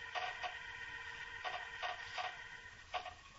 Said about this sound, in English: He's taken the lid off the box. I can hear the nails squeak.